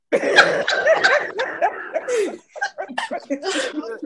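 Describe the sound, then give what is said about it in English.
A sharp, breathy sneeze bursts out amid lively, overlapping vocal noise, with more chatter and laugh-like sounds continuing right after it, all fairly loud. “God bless you.”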